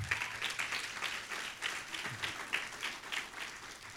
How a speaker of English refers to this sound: Are you with me today? Come on, give Jesus a hand clap right now.